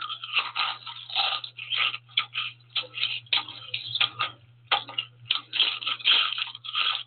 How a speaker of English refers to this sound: Every time a person crunches into a potato chip, he or she is enjoying the delicious taste of one of the world's most famous snacks, a treat that might not exist without the contribution of Black inventor George Crumb.